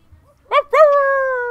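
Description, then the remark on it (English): A dog lets out one short, sharp yelp, then a long, drawn-out whine that holds steady and slowly drops in pitch. It is fairly loud, with no other sounds. “He has a zombie dog.”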